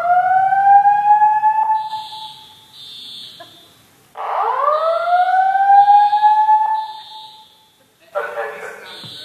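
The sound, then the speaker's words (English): A fire alarm in a church, not a drill, wails in loud rising sweeps, repeating roughly every four seconds, with a shrill pulsing beep sounding between the sweeps and faint voices underneath. “It's not a drill.”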